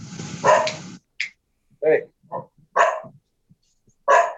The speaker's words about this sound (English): You know, man, we listen to Brett's dog every once in a while. It's no big deal, man. You know, we like it. The people are used to it.